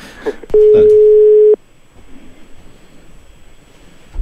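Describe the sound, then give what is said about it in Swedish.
A single steady telephone ringback tone sounds for about a second while a call is placed to a hockey player, with a brief bit of voice just before it and low background noise afterward. “Ja, vi ringer honom det. På en gång.”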